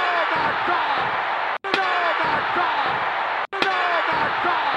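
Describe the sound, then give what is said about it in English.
Loud steel chair shots strike in a repeating pattern, about three hits roughly two seconds apart, each a sharp metallic slam over a constant noisy roar broken by brief silent gaps. “We go by chair shots. See? So how many chair shots do you give Backlash”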